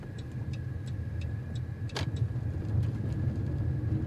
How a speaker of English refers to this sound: And here we are on a dirt road, which you can probably hear.